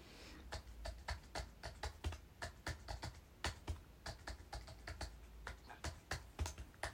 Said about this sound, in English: Typing on a Braille display as well.